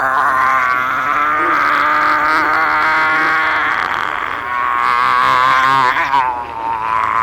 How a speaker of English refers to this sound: The Vlerg opens its massive mouth wide. It burps.